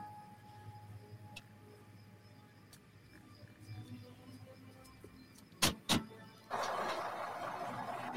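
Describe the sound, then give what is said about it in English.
A bus rumbles under a steady low hum, two sharp clunks ring out, and then a loud, broad rushing roar swells and holds through the final seconds. “That very subtle, Frank, a bus.”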